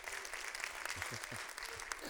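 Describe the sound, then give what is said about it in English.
An audience at a church service claps their hands together in a dense, steady burst of applause when asked to clap in Jesus' name, the sharp claps blending into a continuous crackle with faint voices underneath. “Come on, somebody, clap your hands in Jesus' name.”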